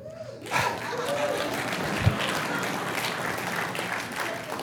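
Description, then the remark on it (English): An audience claps steadily after a Gospel reading of the genealogy of Jesus, a dense wash of many hands sustained for several seconds, with a murmur of voices mixed in beneath the applause. “Now, you're all clapping because that is definitely not the most engaging and exciting reading that we find in the Gospels.”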